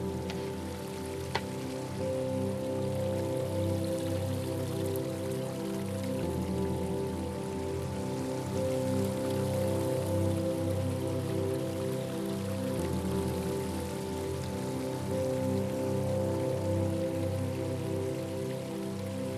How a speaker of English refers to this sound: Oh, look. Yeah, a stream. Let's stop and admire it for a bit.